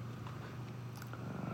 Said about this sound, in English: And Monkey, no, this is not wrestle time. He thinks, because he's feeling better, it's time to wrestle again. But I don't want to do that, Monkey. Just cuddle and purr like a good kitty.